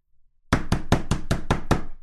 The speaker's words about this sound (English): So loud. The neighbors hear it. They don't have their homes all shut up with air conditioning. The neighbors hear the pounding on the door.